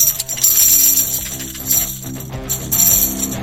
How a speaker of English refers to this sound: That's a tambourine.